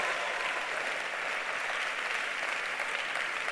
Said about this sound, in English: Church, are you clapping? Are you clapping?